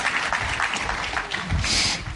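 An audience claps steadily for a man who has just broken things up on a table with a hammer, a dense, continuous patter of many hands at a fairly loud, even level throughout, with no voices standing out.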